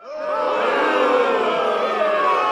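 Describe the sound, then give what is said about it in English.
A theatre crowd erupts in loud, sustained hissing and screaming, many shrill voices yelling over one another in a dense, unbroken roar that swells within the first moment and holds steady. “They hissed and screamed.”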